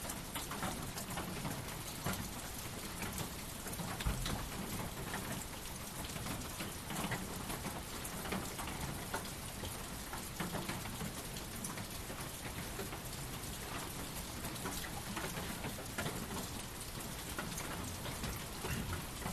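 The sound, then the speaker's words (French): Steady rain pours down continuously, a dense, even hiss of drops pattering on surfaces, with no voices and only faint hints of rumble beneath. “Quoi que ce soit qui soit là, peut-être que pour vous à l'avant-plan, il y a les sons de la pluie, puis que c'est délicieux.”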